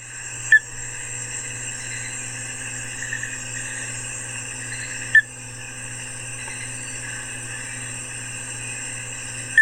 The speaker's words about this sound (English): A little brown frog hopped out of its disturbed burrow, and all the scientists scrambled around in an excited panic to catch it carefully before it got away. This is what the frog sounds like.